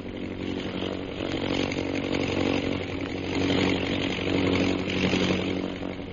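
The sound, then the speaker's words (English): A propeller plane engine drones steadily overhead as it circles over a group of men, a rough, buzzing hum with a low harmonic growl that swells slightly and then eases, with no voices. “He's circling over them. You see his plane?”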